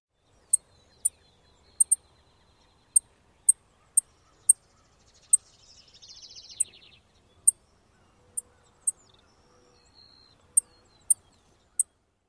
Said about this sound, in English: Then the Savannah Sparrow. Savannah sparrows also have a high, thin sip. So one more time, call notes of the Savannah sparrow.